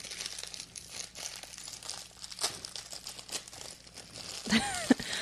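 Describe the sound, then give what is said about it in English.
Plastic wrapper crinkling and crackling steadily in irregular bursts of bright, papery noise, with a brief faint voice near the end. “I'm sure all that plastic in your ear was so fun.”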